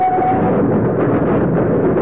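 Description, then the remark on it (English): A steady, dense rumble of a train riding along the rails from Dover up to London, low and loud throughout, with a faint high whine early on and a continuous clattering texture underneath. “He is now riding a train from Dover up to London.”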